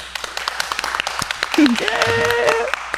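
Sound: people clapping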